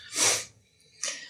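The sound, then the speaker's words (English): Cave dogs sniffling and running in a large rocky cavern, with animal sniffling and snorting and two breathy, hissing bursts: a longer loud one, a pause, then a shorter, softer one. No talking. “You can hear the sniffling and running of cave people, cave dogs.”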